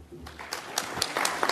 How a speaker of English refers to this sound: Oh, there you go. Politely clapping. Yeah, the clapping. I left the clapping because that's a good sound effect, I thought.